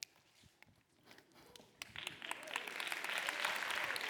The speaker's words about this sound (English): You're clapping because you're white. Black people know that's not dancing.